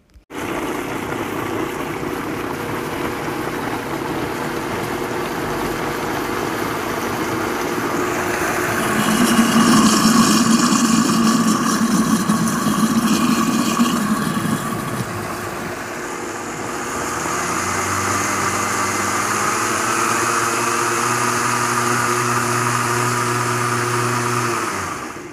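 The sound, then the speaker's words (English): A blender runs steadily, then changes speed in the middle, surging louder and harsher, then settles into a lower, humming motor tone with shifting pitch. It's continuous, with no voices. “That one's Mimi's blender.”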